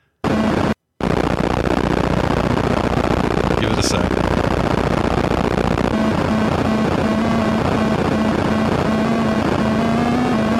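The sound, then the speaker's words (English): A harsh, crude Atari 2600-style helicopter sound effect from a game's ending, as the helicopter is taken and leaves: loud, continuous buzzing noise with a brief high chirp partway through and a steady low tone joining later, with a short spoken line near the start. “That is such an Atari 2600 sounding helicopter.”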